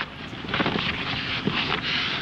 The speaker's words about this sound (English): Sounds like some very intense shuffling to me. Back and forth.